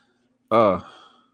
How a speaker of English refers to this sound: Huh? What happened? What, you over there eating something? No, I gotta blow my nose.